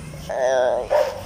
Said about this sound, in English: Oh, there you go. That dog again. Dude, it's me. Stop barking and stuff.